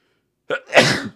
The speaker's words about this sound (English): Ooh, excuse me. Oh my goodness, it seems like every time I do a podcast, I sneeze at least once.